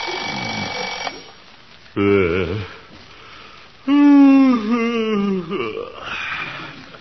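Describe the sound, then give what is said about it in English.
An alarm clock rings loudly in short bursts early in the morning in the town of Summerfield, its buzzing tone rising and wavering, while a drowsy voice groans and mumbles between and over the rings. “Oh, alarm.”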